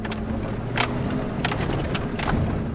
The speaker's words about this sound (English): The dirt roads leading to the homes peppering the hills of Primo Tapia are cut with deep ruts from recent rains. Dana's keys swing back and forth as she navigates through the bumps.